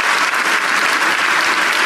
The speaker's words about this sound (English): Give God praise. If you're going to clap, give Him praise. Give Him real praise.